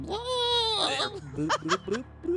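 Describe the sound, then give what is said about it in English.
A voice imitates a fish screaming underwater: a strained, wavering high-pitched wail for about a second, breaking into a few short gurgling, bubbly vocal bursts. “Okay, I dare one of you to make a screaming fish sound, like a fish screaming underwater.”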